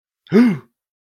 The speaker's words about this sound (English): I'm going to gasp